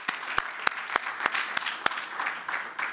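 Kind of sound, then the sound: crowd, audience hand clapping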